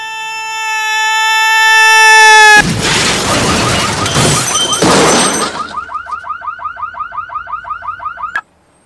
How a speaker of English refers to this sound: He jumped off the building and crashed right through that car.